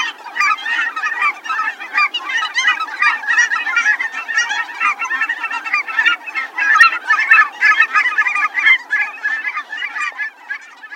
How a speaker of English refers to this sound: In terms of calls, cackling geese are a bit squeakier.